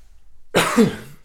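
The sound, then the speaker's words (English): A single rough cough bursts out after a brief silence, breathy and throaty with a short raspy tail as it fades. “Got a little bit of a cough here.”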